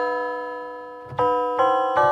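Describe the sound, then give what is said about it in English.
A bell sound effect: bells ring out in a quick series of bright, sustained chimes, one already sounding at the start, then three more strikes that overlap as their tones linger. No one speaks. “Ring the bells. Ring the bells.”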